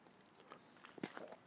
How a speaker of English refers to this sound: I'm going to take another sip of coffee here before I keep going.